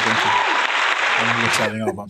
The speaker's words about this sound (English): So let me give a little round of applause here.